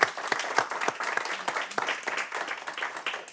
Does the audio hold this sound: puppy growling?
no